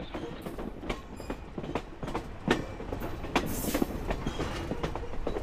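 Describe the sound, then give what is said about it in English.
A slow steam train rolls steadily along the rails, its wheels giving off irregular clickety-clack knocks over a constant low rumble, with no voices. “I gotta tell you, this train moves awfully slow.”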